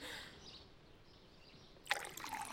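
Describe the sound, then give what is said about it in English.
Water pours into a glass, starting as a soft trickle and then gushing louder with a bright, splashy burst near the end, with no one talking. “Water is just fine.”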